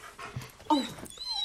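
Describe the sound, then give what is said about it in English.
A dog pants in quick, breathy bursts, with a short high whine rising in the middle. No one speaks. “Is that a dog? Yep.”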